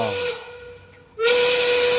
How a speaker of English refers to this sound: Quitting time! We don't control it, guys. When the whistle goes, the whistle goes.